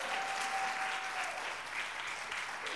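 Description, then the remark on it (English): An audience claps together as a clap offering to God, steady, dense applause that holds at an even level for the whole stretch, a broad wash of many hands with no voices standing out. “Come on, let's give God a great clap offering.”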